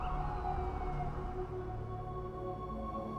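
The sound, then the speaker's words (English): A steady roar of city street traffic on a chill evening, with a wailing siren whose tone slides up and down above the low rumble of engines. No one speaks. “They stroll through the chill evening to a soundtrack of traffic.”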